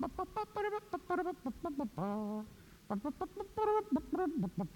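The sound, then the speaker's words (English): A lone voice imitates the trumpet's call to post heard before the Kentucky Derby, singing quick staccato notes with one longer held tone partway through. It is fairly loud, with no instruments and no other voices. “I want you to think, before you watch the Kentucky Derby, what do you hear the trumpet do?”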